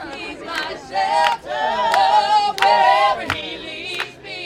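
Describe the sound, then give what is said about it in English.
A small crowd gathered under a tent in Promised Land on a sunny Saturday morning, just before the festival's annual hat parade, talking at once, several voices overlapping in a steady, fairly loud babble, with a few sharp knocks or claps cutting through now and then. “There's a small crowd gathered under a tent.”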